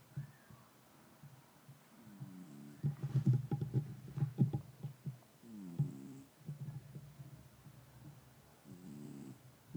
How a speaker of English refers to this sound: Producer Moose is snoring, and it's really cute. And I want to put the microphone there and record it, but I don't want to bug him, but I'm going to try.